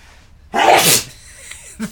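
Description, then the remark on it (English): A single sharp sneeze bursts out, a loud explosive blast that quickly fades into a short, breathy aftermath with a faint sniff at the end. “There might be a sneeze coming.”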